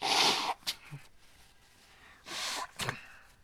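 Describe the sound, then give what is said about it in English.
Someone blows their nose twice, each a forceful, noisy burst of air followed by a quick shorter snort, with a quiet pause between them. “And I'm sorry, I have to blow my nose.”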